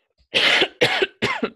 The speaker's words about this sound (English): I do apologize if any of my coughs make it in because there's just like a situation going on in my throat right now. And it's not coronavirus.